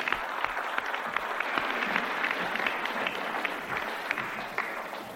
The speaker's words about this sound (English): And I want our brother to come and have a little word with you. All the way from Scunthorpe, give him a clap.